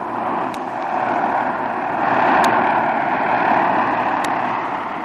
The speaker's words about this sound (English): Yes, that's him, amigo. That's the gringo's plane coming in now.